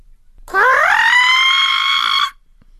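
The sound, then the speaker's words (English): A single long, loud crow caw, drawn out like a sung note: its pitch slides upward at the start, then holds steady and harsh for nearly two seconds before stopping abruptly, with no talking. “I know that you're saying that Miss Crow's voice is not exactly star quality, but to me that caw was just the sound that I'd been waiting for, because as soon as she opened her beak, the cheese fell to the ground”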